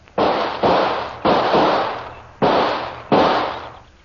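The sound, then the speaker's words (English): Five loud gunshots fired into leaves where something was seen moving, in an uneven sequence, each a sharp crack trailing into a rumbling decay; the last two come after a longer pause. No voices. “Come out from those leaves, whoever you are, or I'll shoot.”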